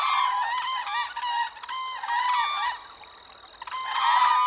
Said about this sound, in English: BirdNote today takes us to the second largest national park in the world. It's over 17,000 square miles and is a UNESCO World Heritage Site. And as Michael Stein tells us, it's the summer home for America's tallest bird.